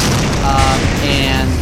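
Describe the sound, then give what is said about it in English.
A loud, rumbling explosion effect fills the whole moment, a dense low-heavy boom that roars on without letting up, with faint ringing tones drifting over the blast. “This explosion just goes off, boom, right in the middle of all of you.”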